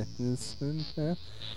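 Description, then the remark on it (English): A voice imitates the wavering hum of a cloaked Romuloid bird of prey spaceship with three short, low, droning bursts whose pitch bends and wobbles, over a faint steady high hiss. “When your brain perceives something scary, when your senses perceive something scary, like the wavering sound of a cloaked Romuloid bird of prey.”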